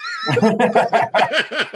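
A horse whinnies loudly: a high, shrill opening cry breaks into a quick series of quavering, descending pulses, like a neighing sound effect played on its own.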